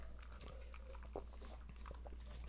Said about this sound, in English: All right, now we can cleanse our palates. Water.